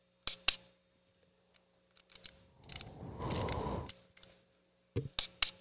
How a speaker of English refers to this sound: And then listen to the sound of the shutter is so quiet.